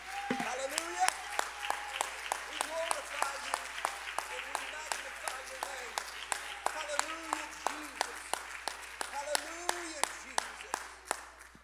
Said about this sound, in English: One more time, would you clap your hands joyfully and triumphantly to the Lord?